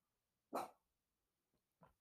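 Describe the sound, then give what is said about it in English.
The speaker's dog barks twice, a sharp, loud bark followed about a second later by a shorter, softer one, with no talking in between and quiet around them. “my dog is messing up my whole audio right now. Can you shut up?”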